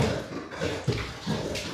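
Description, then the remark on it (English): A female dog whines in the background, sounding injured, in a few short uneven pulses over a steady wash of room noise; no one speaks. “Things are happening in the background. That would be Mikey's dog.”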